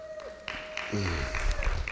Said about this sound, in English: And I'm thoroughly impressed with this crowd that you came to church on Game 7 on the World Series tonight. I am thoroughly impressed. Give yourselves a big hand.